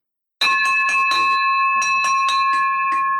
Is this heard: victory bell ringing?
yes